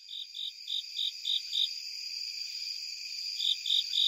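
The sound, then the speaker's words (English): A Japanese burrowing cricket, in September under a car in a Maryland state forest, calls alone with a steady, high-pitched trill pulsing in regular beats, pausing for about two seconds before the pulsing resumes, all over a faint constant background hiss. “Japanese burrowing cricket in September from under my car in a Maryland state forest.”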